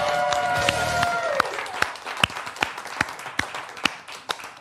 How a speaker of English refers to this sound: Hello, someone's still clapping.